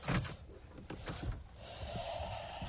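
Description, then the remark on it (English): A door is opened: a few knocking clunks of the handle and frame, then a sustained scraping, creaky slide as it swings open. “I'm gonna open my door real quick.”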